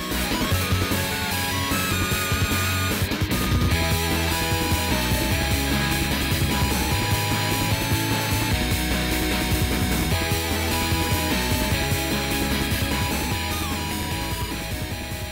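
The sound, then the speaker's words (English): Dense, driving chiptune music with buzzy square-wave leads, bright harmonics and a steady pounding beat, playing loud and continuous throughout with no talking. “and, of course, let these sweet, sweet beats ride.”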